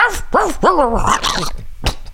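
A dog barks and growls in a rapid string of harsh, snarling bursts with rising and falling pitch, then a sharp final yap. No one speaks.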